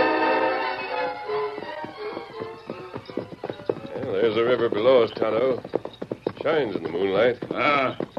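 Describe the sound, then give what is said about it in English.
Horse hooves of arriving cowhands clip-clop in a quick, steady rhythm over a sustained musical tone, then shouting voices take over and the hoofbeats fade beneath the talk. “Rein up your horses.”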